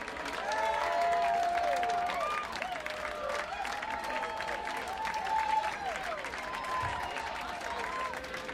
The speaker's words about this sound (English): It's a packed house. There's about 400 people in the room. All the way back to the back doors. If people aren't clapping a lot, it's because there's just no room to move your arms.